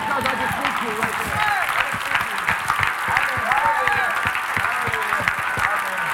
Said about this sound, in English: I'm just going to clap for myself one time.